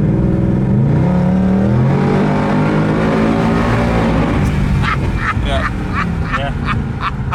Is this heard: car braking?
yes